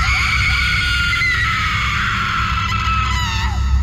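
A woman lets out a long, piercing scream as she jumps off a cliff. It is loud and holds for several seconds, with a rumbling low background beneath it, before the cry drops off at the end.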